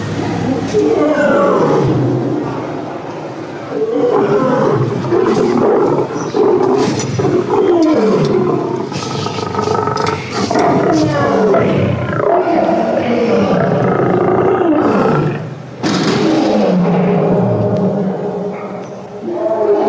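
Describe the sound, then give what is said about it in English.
Deep, powerful big-cat roars repeat in loud, rumbling bursts, echoing through a zoo, with brief pauses between the drawn-out growling calls. “When they're angry or agitated, you can hear their roars echo throughout the zoo.”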